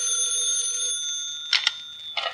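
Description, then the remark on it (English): An old-fashioned telephone bell rings with a bright, sustained metallic tone that fades, followed by two short, sharp bursts of ringing. No one speaks. “I was about to buy a file and bake a cake when the phone rang.”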